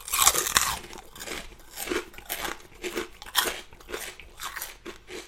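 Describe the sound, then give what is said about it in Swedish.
Crisp Spanish snacks made from Iberico pork being crunched: a sharp, crackly first bite followed by a steady run of loud, brittle chewing crunches, about two per second, with no talking. “Ett av mina favoritsnacks faktiskt.”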